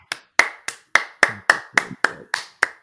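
A short round of applause: about ten sharp, crisp hand claps in a steady, even rhythm, fairly loud, with no voices.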